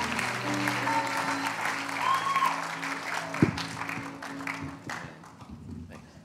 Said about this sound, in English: Why don't we give him a big round of applause this morning?